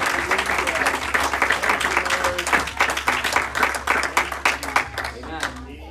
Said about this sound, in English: So as he comes on up, I want you to give the Lord a hand clap. Amen.